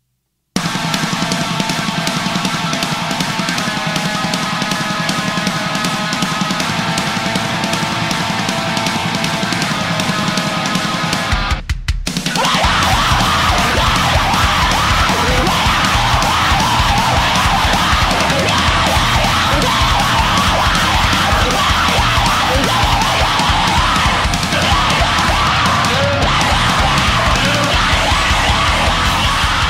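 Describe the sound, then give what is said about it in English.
Loud, dense heavy hardcore music with screamed vocals. A sustained, tonal opening cuts out abruptly before a harsh, distorted full-band wall of sound crashes in and keeps pounding to the end. “So the thing with that one is I do like some heavy hardcore screaming. That's way too heavy.”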